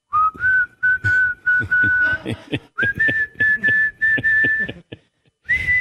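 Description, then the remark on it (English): A man whistles a tune while walking up to the podium, in long, sustained notes, the pitch stepping higher partway through, with a steady rhythmic thumping beneath and a brief pause before the melody resumes. “I just heard that … walking up to the podium was whistling.”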